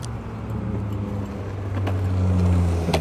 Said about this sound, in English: As a guy in a skateboard, electric skateboard, zooms by me.